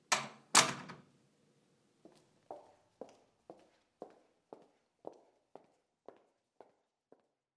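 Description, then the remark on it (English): Two sharp bangs like a door, then a steady series of about a dozen footsteps as a woman strides out the door at an even pace, gradually growing fainter. No voices. “The executive then strides out the door, no doubt on her way to a more important meeting.”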